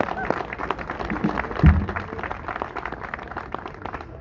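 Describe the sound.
A crowd at the kick-off of the 38th annual Octoberfest applauds the event's sponsors, clapping steadily for several seconds, a dense patter of overlapping hand claps with a brief louder thump partway through and some murmuring voices underneath.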